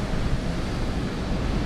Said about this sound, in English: It's blowing about 30 knots, maybe gusting to 40. And we've got about 4 to 5 metre swells coming from the west, and we're running about on a south-west direction.